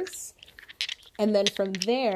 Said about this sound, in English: So if you're new, the noise you're hearing in the background right now is me moving around the dice so we get random